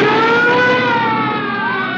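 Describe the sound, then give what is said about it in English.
Wailing police car sirens with gliding, sweeping tones rise and fall over a steady rumble of car engines as police cars pursue a car and signal it to stop; loud, with no voices present. “Falsey, what's that? Police cars.”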